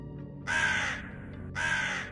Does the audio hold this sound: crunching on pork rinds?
no